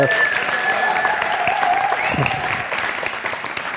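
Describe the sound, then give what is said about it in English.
A crowd claps steadily and densely throughout, applauding their director of operations, a sustained wash of applause with a few faint whistles or cheers riding over it. “Once again, give him an applause, thunderous applause.”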